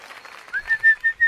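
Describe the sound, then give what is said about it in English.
A burst of audience applause in a small room, a soft crackling patter that gives way to loud, high, steady whistling blown in several pulses, with no one talking. “We appreciate the applaud. It's completely unnecessary.”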